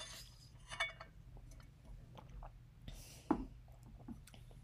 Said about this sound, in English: I'm gonna just take a quick sip of water because that was a lot of talking.